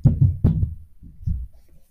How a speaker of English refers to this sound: Well, that was some stamping. You may have been able to hear that noise. That was my little sister and her friend.